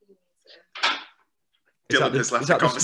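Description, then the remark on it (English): A door slams once with a sharp, loud bang that dies away quickly, preceded by a few faint knocks; after a short pause, a person starts talking. “Is that the sound of the door being slammed?”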